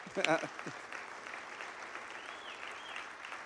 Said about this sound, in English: There's people clapping. Go ahead, clap.